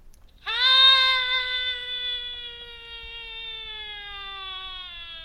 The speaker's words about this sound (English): And so I recorded myself screaming.